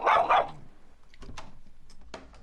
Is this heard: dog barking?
yes